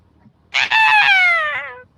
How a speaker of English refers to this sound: So, you're walking along, you hear a shriek from the darkness.